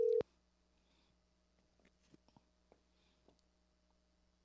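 A single short, loud electronic telephone tone cuts off abruptly as a phone call drops, leaving near silence with a few faint, scattered clicks and soft rustles, like a line going dead.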